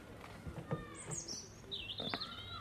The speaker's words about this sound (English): All you hear is the birds, usually.